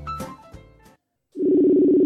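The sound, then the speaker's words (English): A telephone being dialed: a quick jumble of short tones, a brief silence, then a loud, steady, low-pitched ringing tone that holds to the end. “see if we can have a chat to none other than Chris Kazari. Ring, ring, ring, ring, ring, ring, ring”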